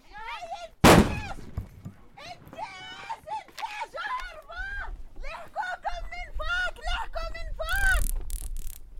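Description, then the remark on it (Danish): A single sharp, loud blast bursts out near the start, followed by shouting voices and, toward the end, brief bursts of harsh electric crackle: soldiers chasing boys in a small village throw stun grenades and use their stun guns. “Soldaterne jagter drengene, de smider chokgranater, og man kan høre lyden af strøm fra deres strømpistoler.”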